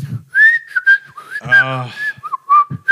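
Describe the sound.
A person loudly imitates a piercing whistle with a sustained, wavering tone, broken by short breaths and a brief voiced sound partway through. The person is mimicking a man whistling while sitting at a table in a Dairy Queen restaurant.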